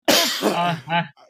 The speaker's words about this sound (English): this COVID cough is killing me.